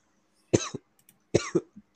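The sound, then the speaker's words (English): Two harsh coughing fits, each a sharp burst followed by a shorter rasping hack, about a second apart. No talking is heard. “Dude, this is there's gonna be like 15 minutes of this accumulated of me just coughing.”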